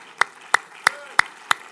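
Five crisp, evenly spaced claps land in a steady, moderate rhythm, each a sharp snap that fades quickly over a low background hum, with no voices.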